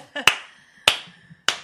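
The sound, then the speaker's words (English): Three sharp, crisp hand claps spaced evenly about half a second apart, each ringing briefly, with faint murmuring voices low in the background. “I'll give you a clap on that one.”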